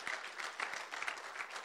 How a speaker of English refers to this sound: Now, church, come on, give them a clap offering, amen.